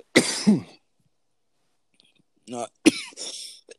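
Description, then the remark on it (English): Two fairly loud bursts of coughing about two seconds apart, the second a short cluster of harsh coughs, with silence between them. “I'm not coughing into the microphone, so you're fine.”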